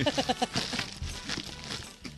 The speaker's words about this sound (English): All right, let's open this gift